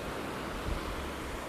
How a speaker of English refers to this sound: What you're hearing in the background is the current, the ocean current, currently on an island.